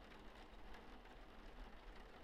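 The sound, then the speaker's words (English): Steady rain falls in a continuous, dense hiss with faint patters of drops on a surface, fairly quiet and even throughout, with no voices. “She puts the umbrella in front of her body again, shielding it from the rain, and closes her eyes.”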